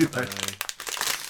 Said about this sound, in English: Right. This is a very loud bag.